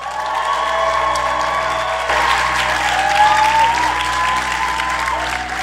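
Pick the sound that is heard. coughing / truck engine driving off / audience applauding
audience applauding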